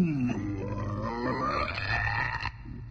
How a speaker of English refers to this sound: The giant's face bulged and blushed, and his belly swelled to unbelievable proportions. He then dropped his arms to his side and let out a massive belch.